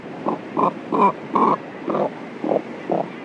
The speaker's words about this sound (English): Let's listen again to the limited vocal range of the cormorant, whose syrinx is controlled by only one set of muscles.